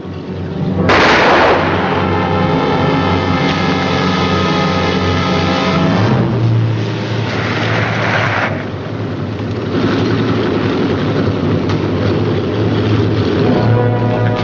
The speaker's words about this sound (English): Strasser has been shot.